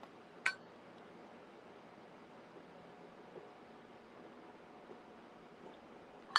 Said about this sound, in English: Take a sip of my water here.